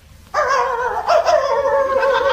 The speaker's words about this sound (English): it's a dog. Here, boy, here. Come on, good boy.